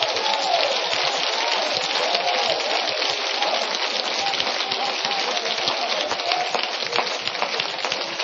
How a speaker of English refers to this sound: Clap your hands.